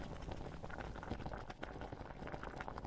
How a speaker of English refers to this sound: I have a kettle that has different temperature gauges for different types of tea. So I will put my kettle on the green tea temperature, which is about 2/3 of the way of a black tea temperature, and I will boil the water.